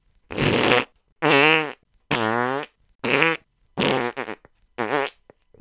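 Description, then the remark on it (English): A series of six loud, buzzy fart noise sound effects, each a short blast separated by brief silences, some rising or wobbling in pitch, with no talking. “I bet SoundCloud is going to reject a future show title, Josh Allen Fart Noises, because we've already used it.”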